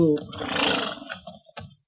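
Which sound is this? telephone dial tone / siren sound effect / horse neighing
horse neighing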